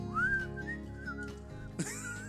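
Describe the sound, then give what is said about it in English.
A person whistles a short wavering tune, the pitch sliding up and dipping over about two seconds, with background voices and noise underneath and a brief bright burst near the end. “So for the rest of this episode, I'm just going to whistle.”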